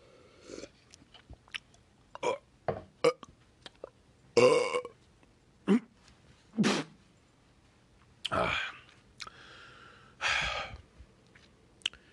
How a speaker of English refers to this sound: Ooh, I wish I could cut that. It's okay, I just choked on some water. Well, that was awful.